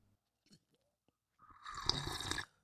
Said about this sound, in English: And just like that, I'm back for our last sip segment here on the show. Get the last sip of my sparkling water.